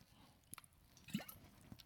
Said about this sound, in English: sorry, my water bottle is really loud. It's weird.